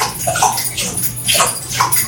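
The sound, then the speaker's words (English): A dog drinks water with its muzzle buried inside a water bottle, lapping noisily, with wet slurping and sloshing bursts repeating every half second or so, fairly loud, with no voices. “Is there a dog just burying its muzzle inside the water bottle?”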